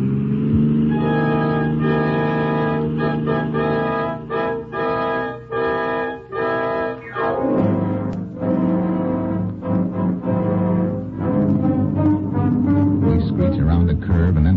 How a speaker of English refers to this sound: Their car roars past.